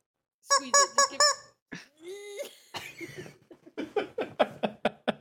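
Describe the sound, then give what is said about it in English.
A rubber chicken toy screams as it's squeezed: three quick squawks, a longer wailing shriek, then a rapid run of short squeaky honks, loud and close with no talking. “We got those screaming chickens around here somewhere. You gotta get one of those. Literally screaming chickens.”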